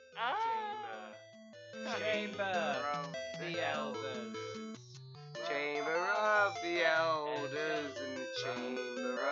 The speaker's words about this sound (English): Play that Tetris theme tune.